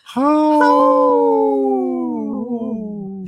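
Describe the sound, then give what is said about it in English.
A single long, loud wolf howl, sustained for about three seconds, holding a steady tone that slowly slides downward before wavering and fading at the end. “Howl. Wow.”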